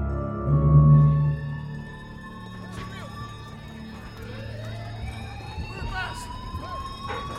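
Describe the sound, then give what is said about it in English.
A fire alarm, set off by a bed that was set on fire, rings steadily throughout, its sustained electronic tones with slowly rising sweeps, over a busy background with a brief low rumble near the start. “They'll know it's a false alarm. It's not. It's why I set fire to the bed.”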